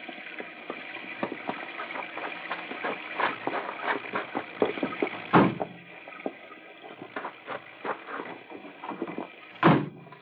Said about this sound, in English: I'll open the car doors. Come on!